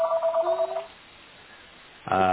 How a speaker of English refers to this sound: Richard didn't get the memo, I guess, about no phone calls. I'm very busy. It's my friend. Wait, is that a landline?